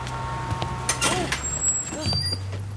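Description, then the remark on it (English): A city bus idles with a low engine rumble, then its air brakes let out a sharp hiss and sigh, with faint traffic noise in the background. “ran out and jumped on a city bus.”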